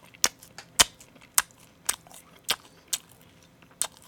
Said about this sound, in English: My mouth just watered. Moist. Is it weird that my mouth watered after you just crunched that?